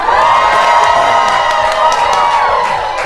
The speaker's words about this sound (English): Welcome to this special live edition of the Cynica Podcast, coming to you from the definitive China happy hour at the 18th Street Lounge here in Washington, D.C. Let's cheer you folks. Make a little noise.